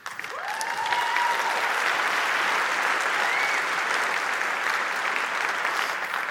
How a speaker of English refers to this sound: Now, before you applaud too much, this was my idea 20 years ago.